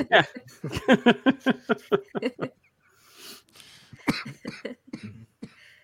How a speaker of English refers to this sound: and I'm over here coughing more than he is.